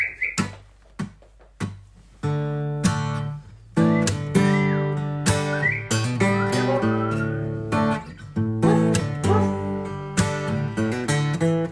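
A whistled melody rides over a full band backing of sustained chords and sharp drum hits, clear and upfront, weaving in and out across the passage with no talking.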